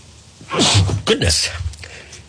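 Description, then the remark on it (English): A single loud sneeze with a sharp breathy onset and noisy burst, followed by a brief exhale, heard on its own with faint background noise around it. “Live sneeze from the chosen one of what's going on.”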